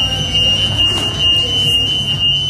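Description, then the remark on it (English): A steady, piercing electronic alarm tone drones continuously over a low hum and busy indoor ambience, loud and unbroken throughout: an alarm going off inside a fast food restaurant, still sounding 20 minutes in. “The alarm is still going off. It's 20 minutes in, still the alarm here in this restaurant, in this fast food restaurant.”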